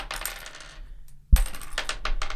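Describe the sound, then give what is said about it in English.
A small die rattles and clatters across a hard surface, goes briefly quiet, then lands with a sharp knock and tumbles on in a run of quick, bright taps. “I just want to play with this little die thing all day.”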